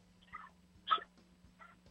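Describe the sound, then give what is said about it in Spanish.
A small female dog named Chichi, dressed in a little pullover, lets out three short, high yips spaced about half a second apart, fairly faint, over a steady low electrical hum in an office. “Tengo un guardián aquí en la oficina que no deja entrar a nadie, ¿sí? La perrita Chichi, pues sí, esa la tenemos vestida con un pulovercito de Ñoque Barato.”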